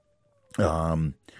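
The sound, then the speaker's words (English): A dog lets out a single loud, drawn-out whine lasting about half a second with a strained, tonal quality, followed by quiet; the dog is whining to be let into the room. “I think I'm going to have to really quickly, like this is going to be like 3 seconds of me letting my dog in here.”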